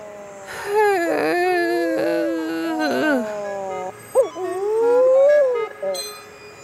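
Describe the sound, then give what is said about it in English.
Mutton bird calls: loud, moaning wails that rise and fall in pitch, strung together in several drawn-out phrases with a brief break before a final long, wavering cry. “But for now, I'm …, signing off like a crash-landed mutton bird.”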